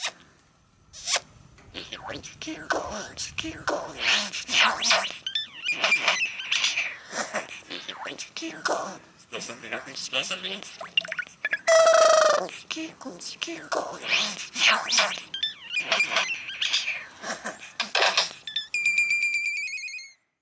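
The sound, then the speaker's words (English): A curl-crested jay runs through a continuous string of city noises it picked up while living in the city: harsh rasps and zipper-like scrapes, a rising whistle, squawks, and a closing burst of electronic beeps. “to at least give you an example of how birds can perfect the art of inorganic noisemaking, here's a curl-crested jay imitating some sounds it picked up while living in the city.”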